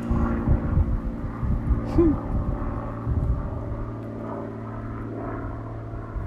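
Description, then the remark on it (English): A propeller airplane passes overhead, its low, steady droning rumble filling the whole recording, with a faint murmur of a voice in the first few seconds. “Oh, a plane. I should have put plane somewhere on my list.”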